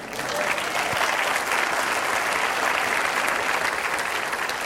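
An audience claps steadily for several seconds after a presentation, a dense, even wash of many hands with no pauses and no voices standing out.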